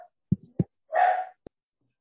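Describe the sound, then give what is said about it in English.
A small dog named Peanut gives a few short, low woofs followed by a longer, higher whining whimper and one last brief yap, alone without any talking. “Peanut, you can hear Peanut in the background.”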